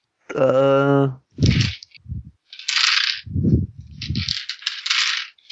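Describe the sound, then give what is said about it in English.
A brief vocal sound, then a couple of dropped dice clatter in a few quick bursts of sharp rattling and thumping on a table during a tabletop game, loud. “Sorry, I dropped a couple dice.”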